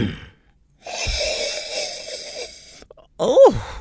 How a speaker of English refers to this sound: And on that note, let's taste some Sangiovese, beginning as always with the sniff.